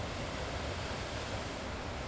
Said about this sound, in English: I hope that the ocean in the background is not too noisy for you, and it doesn't entirely drown out my voice.